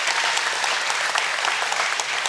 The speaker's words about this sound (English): Man, I just want to clap one more time for Jesus. Amen? That's so awesome.